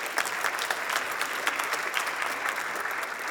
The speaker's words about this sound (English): Yeah, that's worth applauding.